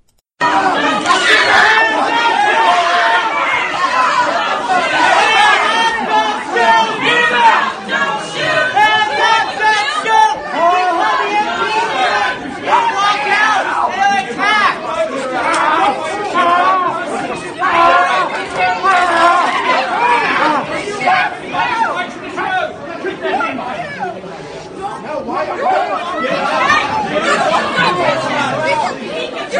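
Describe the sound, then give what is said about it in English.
A loud crowd of protesters shouting at an invited speaker on the University of Missouri-Kansas City campus, many overlapping voices forming a dense, unbroken roar of yelling and chatter that holds steady for about half a minute. “At least the University of Missouri-Kansas City apologized for the physical assault and relentless shouting I endured last night as an invited speaker on campus.”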